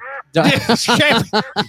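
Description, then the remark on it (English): A person imitates a duck with a rapid string of nasal, squawky quacks, loud, after one brief quack at the start. “You're going to be awake, and you're going to fucking quack like a duck every time you want to swear.”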